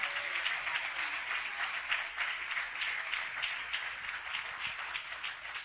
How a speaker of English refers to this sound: And you may as well get ready because somebody is going to be chosen. Oh, you may as well clap your hands to the Lord.